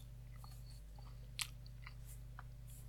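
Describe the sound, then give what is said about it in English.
Someone chews a slice of pizza that has gone soft and a little soggy from condensation, soft wet mouth clicks scattered over a steady low hum, with one slightly louder bite about midway. No one talks. “It's not as crunchy as it was a few minutes ago.”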